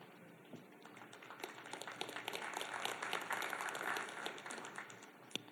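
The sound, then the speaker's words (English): Soft, polite applause from a small group, many light claps blending into a steady patter that swells slightly in the middle and holds for several seconds, with no voices. “Golf clap.”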